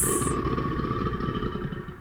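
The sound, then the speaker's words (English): A crocodile's deep grumble rolls on for about two seconds, a rough, vibrating low rumble with a faint steady tone above it and a brief bright hiss at the very start. “That's a beast, baby. That grumble.”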